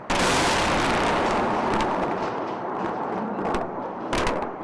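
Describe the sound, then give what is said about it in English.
Heavy explosions boom across Baghdad as the U.S.-led invasion of Iraq begins, a sustained roar of blasts with sharp cracks and bursts rising out of the rumble, loud and continuous with no voices. “The U.S.-led invasion of Iraq had begun, and explosions thundered across Baghdad.”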